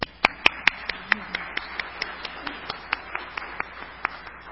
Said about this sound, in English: I needed a good RE class like we have here. Clap, everybody.